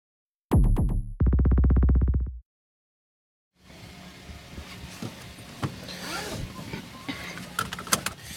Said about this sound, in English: So we're in the car